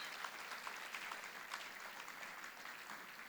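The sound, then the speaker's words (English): A church audience applauds together for a married couple called to the front during the service, a dense, sustained patter of many hands clapping at a steady level for a few seconds, with no voices standing out. “Can we clap for them?”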